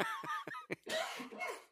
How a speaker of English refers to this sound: Excuse my cough.